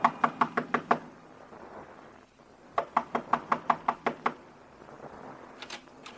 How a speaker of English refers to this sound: Up a flight of stairs, down a hall whose walls are closer against you than they were the night before. Knock on the door.